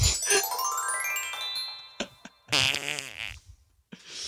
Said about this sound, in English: How many times? Actually, hold on. How many times do you think you fart in one day?